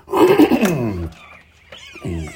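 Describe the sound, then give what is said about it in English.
A dog lets out a long, loud bark with a falling, howl-like pitch, then a shorter second bark after a brief pause, with no talking. “But in the spiritual sense, there's my dog.”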